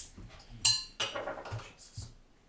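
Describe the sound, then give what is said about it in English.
Goose Island cherry wood beer being poured into a glass: a sharp ringing clink of glass, then a burst of splashing, fizzing pour lasting about a second, ending with a faint hiss. “I'll pour mine first.”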